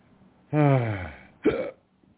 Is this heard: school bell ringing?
no